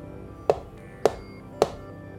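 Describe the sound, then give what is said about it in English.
Three sharp, evenly spaced knocks from outside on the passenger rear window of a car driving at 70 miles an hour, each with a brief hollow ring, distinct against a quiet, low background hum. “Then again, as if a stranger were standing outside of a parked car, came the knock.”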